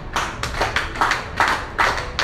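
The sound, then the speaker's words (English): Several people clap together in uneven, rolling bursts, about six swells over two seconds, bright and moderately loud, with no voices over it. “But you are clapping.”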